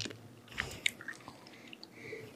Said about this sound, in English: Well, that's liver and onions. But honestly, they're like, are you gonna keep chewing it? Yeah, well, I'm gonna eat the whole thing.